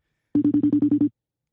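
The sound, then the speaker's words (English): A phone rings on an outgoing call to a friend, in one short burst of rapid, evenly pulsed electronic tones, about eight quick beats at a steady pitch, clear, then silence. “Pick up the goddamn phone.”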